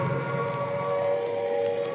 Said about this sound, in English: This is Trafalgar Square. The noise that you hear at the moment is the sound of the air raid siren. I'm standing here just on the steps of St. Martin's in the Fields.